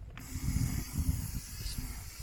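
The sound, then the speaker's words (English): Right Guard Sport original aerosol deodorant, used as fuel, is sprayed in a steady hiss for about two seconds, a continuous airy rush over a low, uneven rumble, with no voices. “Pour a generous amount in there and put the cap on quickly. Let it vaporize.”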